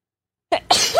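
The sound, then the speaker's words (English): A sneeze bursts out after half a second of silence: a quick sharp intake, then a loud, breathy explosive blast that trails off. “Bless you.”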